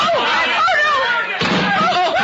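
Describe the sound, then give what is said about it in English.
A wooden chair swung in a fight crashes down with a heavy, clattering impact partway through, amid loud overlapping shouts and commotion from several people. “another inch, Mr. Murch, and that chair would have parted your head”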